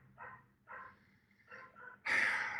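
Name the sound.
dogs barking in background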